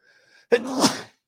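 sneeze

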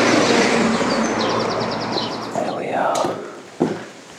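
car passing by

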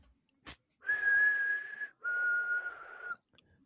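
person whistling a tune

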